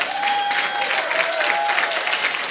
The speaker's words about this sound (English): If you are clapping, you do it well now.